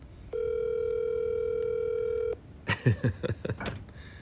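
A single steady electronic phone tone sounds for about two seconds, a phone call ringing out unanswered on the line, then stops, followed by a brief burst of voices talking.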